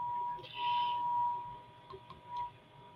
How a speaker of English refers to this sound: For those of us who are ears ringing, you know what we're hearing is the 888 and 963 hertzes. Yeah, that's it.